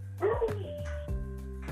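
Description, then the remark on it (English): A dog barks several times in quick, irregular bursts, somewhat muffled, over a steady low background hum with no talking. “Stupid dog.”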